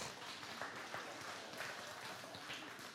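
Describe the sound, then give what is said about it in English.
Soft, steady applause from a group, a dense patter of light claps lasting the whole three seconds at an even, subdued level with no voices. “You can golf clap.”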